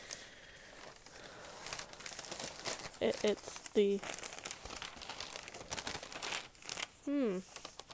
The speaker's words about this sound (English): And of course, I cannot cut the paper straight. I hope people don't really care what their paper looks like.